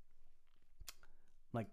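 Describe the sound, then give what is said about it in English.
A quiet sip of water: soft mouth noises and a sharp wet click, then a brief gulping swallow followed by a short voiced breath at the end. “Just had to take a sip of water there, speaking nonstop.”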